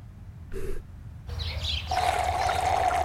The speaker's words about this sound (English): I love the sound effects of Shake sucking up Carl's pool. He literally just sucks all the water out with his straw.